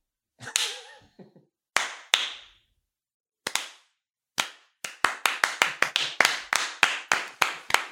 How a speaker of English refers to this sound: I think this calls for a slow clap.